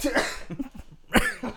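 A few sharp, close coughs in quick, uneven succession, each a short harsh burst with raspy throat noise between them and no talking.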